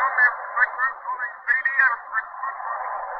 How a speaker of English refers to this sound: and now our technician tells us those ghost voices are back and that the signals are clearing up a bit, so let's listen. We're not sure yet. It may be nothing but those strange patterns of static coming in from the Western Ocean.